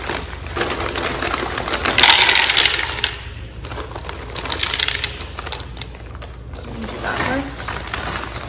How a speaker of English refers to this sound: So the first thing I'm gonna do is I'm gonna take the berries and I'm just gonna put it into the blender.